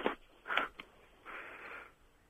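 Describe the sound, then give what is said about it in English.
Soft breathing into a microphone: a few short puffs followed by one longer, drawn-out exhale, faint and slightly hissy, with no one speaking. “Yeah, who's breathing?”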